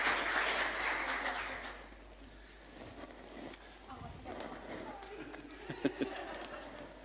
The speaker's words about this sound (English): So why don't you give them a round of applause as they come up.